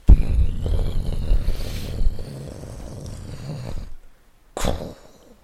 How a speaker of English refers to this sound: You hear the gears on the door. as it starts to unravel and unlock. You hear large pieces of metal clicking off, and then the slow rumble of this massive blast door.